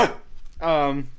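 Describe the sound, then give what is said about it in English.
A person gives one short imitation of a dog's bark, a loud voiced yelp that drops slightly in pitch, following a brief breathy burst at the start. “Did you just bark?”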